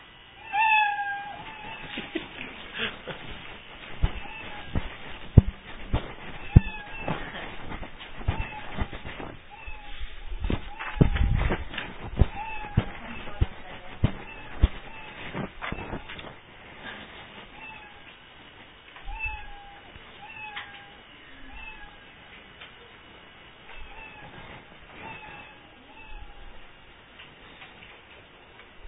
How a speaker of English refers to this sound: Lots of sad kitties around our room right now. I don't know. I'm not a cat fan. I don't know if that's a sad meow or if that's a good meow.